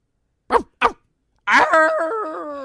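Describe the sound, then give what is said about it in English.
Someone imitates a wolf: two quick, sharp barks, a brief pause, then a long, wavering howl that holds steady and slowly fades, with no other sounds around it. “I'm going to stop there because I think you did dog first. I did dog first. Mine was a wolf.”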